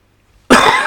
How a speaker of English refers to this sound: I'm sorry. I'm coughing, burping.